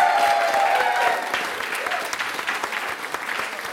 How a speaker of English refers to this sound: So, ladies and gentlemen, please clap, cheer, and give a very warm Moon Underwater welcome to Mr. Tim Key.